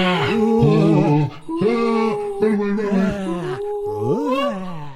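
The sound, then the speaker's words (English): Dozens of ghosts moan, howl, scream and roar together in a loud, continuous ghostly chorus, pitches sliding up and down with brief breaks, as they fly straight at a group of people. “The troop's appreciation of the beauty of the universe was broken up when dozens of ghosts began screaming, howling, flying, and roaring straight at them.”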